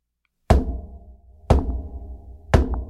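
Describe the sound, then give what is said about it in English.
Three loud knocks on glass, evenly spaced about a second apart, each a sharp hit followed by a deep, resonant ring that fades before the next. No voices. “Just 3 loud knocks.”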